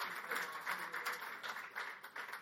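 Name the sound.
audience clapping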